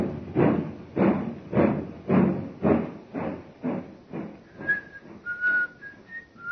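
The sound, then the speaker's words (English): A train pulls out of a station, away from the platform, with steady, rhythmic chugging bursts that gradually soften, while a high whistle-like squeal rises in the second half. No voices are heard. “The train is already disappearing from the track.”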